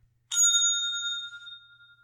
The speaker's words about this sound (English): The bell's pretty long, too.